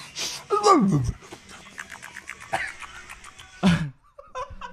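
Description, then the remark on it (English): A person imitates a dog panting: quick, breathy huffs in a steady rhythm, broken by a couple of whiny, falling vocal yelps. It's fairly loud, with no real words. “That's not what a dog sounds like.”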